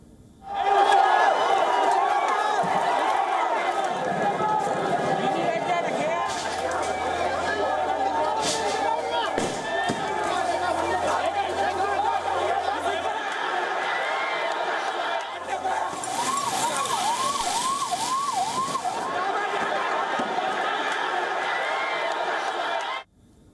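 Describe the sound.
Hundreds of protesters clashing with police at the president's private residence in Sri Lanka as police fire tear gas: loud, chaotic shouting and yelling from many people, a continuous roar of voices with a burst of harsh hissing noise partway through.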